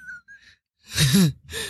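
A loud sneeze: a harsh, noisy burst with a voiced, wavering pitch, followed shortly by a second shorter burst of breath, after faint soft sounds at the start. No one speaks.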